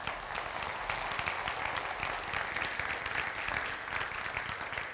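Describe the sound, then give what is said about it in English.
A church audience applauds steadily for about five seconds to thank the worship leader, many hands clapping in a dense, even wash of sound that stays loud throughout with no voices over it. “And it's, you can applaud.”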